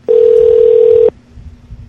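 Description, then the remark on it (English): A loud, steady telephone dial tone after the other party hung up hums at one unbroken mid-low pitch for about a second, then cuts off abruptly, leaving only a faint, low line rumble with no voices. “Yeah, you hung up.”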